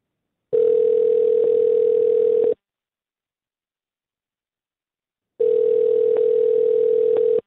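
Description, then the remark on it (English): A phone line rings back twice as a call goes out, each steady electronic tone lasting about two seconds with a long silent gap between, clear with no voices. “Well, let's give her a ring and see if we can get her on the phone and give us some answers.”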